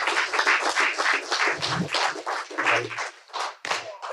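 An audience breaks into applause, a dense, steady wash of many hands clapping together for about four seconds, loud throughout with brief dips near the end. No one speaks.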